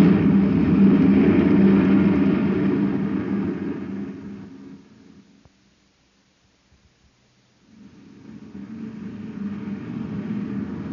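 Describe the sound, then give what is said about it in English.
A maintenance truck's engine roars loudly as it speeds past, then fades away into near silence. After a short pause, another deep vehicle rumble swells back in. No voices. “Wow, that guy drives like a maniac. Did you see him whiz past us? It's a maintenance truck.”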